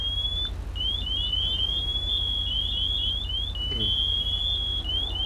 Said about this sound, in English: Deputy Fire Carlo, dude, your pass alarm's on.